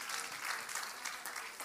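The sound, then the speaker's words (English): A seated audience claps their hands together in a sustained, dense burst of applause one morning, the many overlapping claps blending into a steady roar that fills the room. “In Jesus' name, would you clap your hands as you're seated this morning?”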